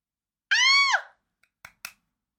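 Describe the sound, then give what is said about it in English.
A loud, high-pitched excited scream lasting about half a second, its pitch dropping as it trails off, followed by two quick sharp knocks or thumps. “If that was a little loud, deal with it. I'm so excited. If I could scream any louder, I would.”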